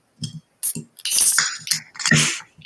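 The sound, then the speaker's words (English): A Beardmore Kolsch beer (4.5% ABV) from Furnace Room Brewery of Georgetown, Ontario, is cracked open: small clicks and handling knocks, then a sharp pop followed by a bright, fizzy hiss, and another burst of hissing near the end. No one speaks. “Just going to crack this open.”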